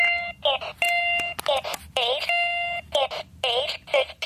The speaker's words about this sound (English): This clock does have a rooster crow and a beep alarm sound.